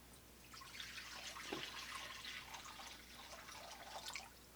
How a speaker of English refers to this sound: But instead, Jesus does something very different. He sits them down, he takes the pitcher of water, and he pours it into a bowl.